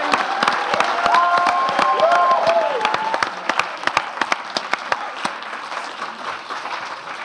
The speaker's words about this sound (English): Oh, round of applause